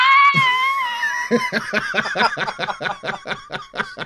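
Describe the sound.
A single voice lets out a high, shrill squeal like an excited concert fan screaming, holding it about a second before breaking into rapid, pulsing bursts of laughter.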